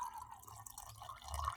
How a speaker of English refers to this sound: Yeah, I was pouring myself another drink and I didn't think it was going to be that loud. I didn't have much left. And then as soon as I started pouring it, it's like right next to the microphone